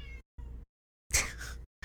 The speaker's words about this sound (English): That's what she does all night. Meow. Yep, it happens.